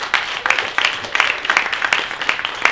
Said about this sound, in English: A hearty round of applause.